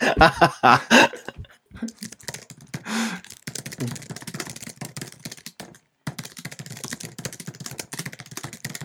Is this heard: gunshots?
no